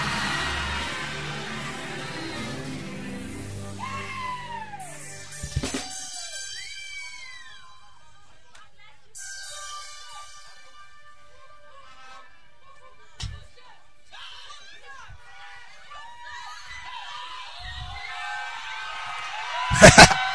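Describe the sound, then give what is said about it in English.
A crowd of worshippers shouting and screaming as they pray for the Lord's help, with high wailing cries that rise and fall throughout, punctuated by a few sharp slaps or claps, the loudest burst coming at the end. “Those who are receiving help are shouting. Those who are receiving help, they are screaming.”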